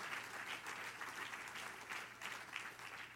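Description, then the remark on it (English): An audience claps hands to Jesus in a dense, steady wash of applause, many overlapping claps blending into a continuous crackling roar with slight rhythmic surges, no voices standing out. “Can you clap your hands to Jesus?”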